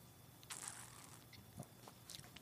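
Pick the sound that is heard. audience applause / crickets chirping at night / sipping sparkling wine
sipping sparkling wine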